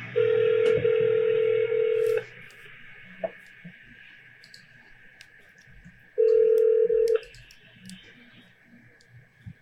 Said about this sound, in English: So if you call this number, which again, I have, hopefully this isn't too choppy, but this is just a quick little snippet. I had called it back in 2017, and here is the audio from that phone call.